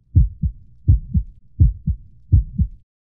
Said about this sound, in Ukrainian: І як б'ється серце.